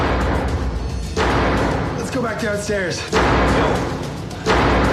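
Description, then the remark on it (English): A window or shutter slams hard against a wall three times at irregular intervals in an abandoned house, each bang loud and abrupt, with a voice speaking briefly between the impacts. “Whatever it was that slammed that window was head energy long before.”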